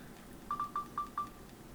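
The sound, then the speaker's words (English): A mobile phone rings with an incoming work call, its electronic ringtone sounding as five quick, clear beeps in an uneven rhythm, with no one talking. “Anyway, I hope I don't have to answer it because it's for work, but whatever.”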